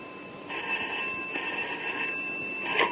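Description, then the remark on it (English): A telephone rings with a steady, high electronic trill, the tone holding continuously for a couple of seconds at moderate loudness with no voices over it. “Hello? Mr. Temple? Yes? Rain here. Is Sir Graham with you? Yes. Hold on, Superintendent. It's for you, Sir Graham.”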